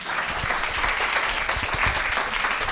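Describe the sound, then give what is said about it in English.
A crowd bursts into steady, loud applause to vote for the "two senses" option, dense clapping that holds evenly throughout without easing off, with a faint whoop or voice here and there. “That's a lot of applause.”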